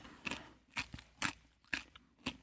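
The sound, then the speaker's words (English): Loud, crisp crunching of a whole raw carrot being chewed, with about five sharp bites spaced roughly half a second apart in a steady rhythm, no talking. “He's have to chewing. Watch you have the whole carrot?”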